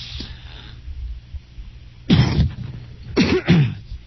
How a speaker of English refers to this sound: I got to find the mute button on this so that I can clear my throat. We've been haying out here in Summer Lake, and we've been literally up to our chin and beyond in hay bales and stacking them up, and it gives me a little congestion in the morning,